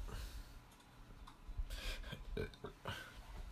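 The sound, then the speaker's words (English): A quiet, low burp rumbles, surrounded by faint clicking and rustling noises, with no one talking. “Ooh, I just burped”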